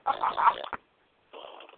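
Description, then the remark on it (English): A whoopee cushion fart played from a phone app: two raspy, buzzing blasts, the first longer and louder, then a brief pause before a thinner, slightly quieter second blurt. No one speaks. “I downloaded an app. It's called Fart Cushion.”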